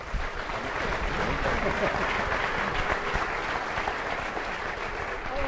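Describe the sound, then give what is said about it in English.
A steady burst of audience applause for two presenters, many hands clapping densely and evenly at a fairly loud level for several seconds. “Guys, give these two a round of applause.”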